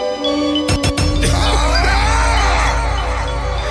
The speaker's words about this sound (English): I feel like as soon as that piano come on, everybody in the crowd, like one continuous yell through the roof, and the roof literally gonna fly off the building. Cause everybody's breath is to the sky, dude.